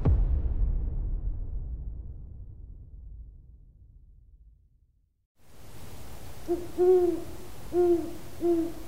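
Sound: owls hooting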